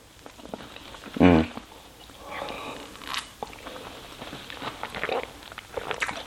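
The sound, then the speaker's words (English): A loud bite into a caramel-filled stroopwafel crunches once, followed by several seconds of quieter, irregular chewing and soft mouth noises, with no talking. “They're better with hot coffee because they get a little warm, but take a bite and take a sip of coffee and it'll blow your freaking mind.”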